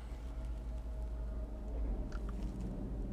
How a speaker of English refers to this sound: There goes a truck going by. I don't know if you heard that. A little fuel tanker from Waste Management of all places.